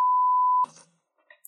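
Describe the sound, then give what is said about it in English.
A loud, steady single-tone censor bleep covering a spoiler holds for just over half a second, then cuts off abruptly into brief, clipped fragments of a voice. “Oh, I'll beep it out.”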